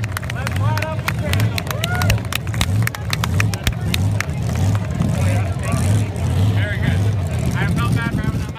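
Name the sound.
race car engine revving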